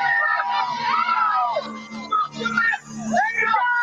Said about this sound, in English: There you go. You hear the crowd?